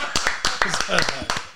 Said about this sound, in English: Round of applause.